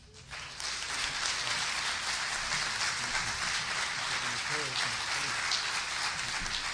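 A crowd breaks into loud, sustained applause, a dense crackle of many clapping hands that rises within the first half-second and stays steady until the end.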